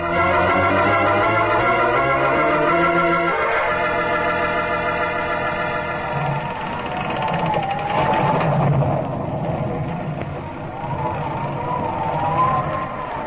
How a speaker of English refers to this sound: This storm is dreadful. It's a bad one, all right. But one always expects a bad blow in these waters.